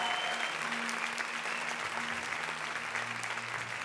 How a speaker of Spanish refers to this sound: How many love your pastors? ¿Cuántos de ustedes aman a sus pastores? Come on, let them know it. ¿Cuántos los aman? Vemos. Let them know it. Vamos, come on. Hácelo saber, dales un aplauso fuerte.